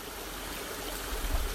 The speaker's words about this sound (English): I'm by the creek.